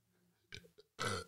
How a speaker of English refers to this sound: No, I'm just going to burp in front of them. I have to burp. It feels good to let it out. I'm going to try to do one. You ready?